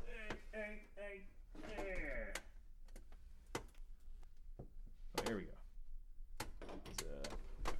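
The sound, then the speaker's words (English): A door is opened with a few sharp clicks and knocks from the handle and latch while people talk over it. “That had a little bit of an echo there. Open that door.”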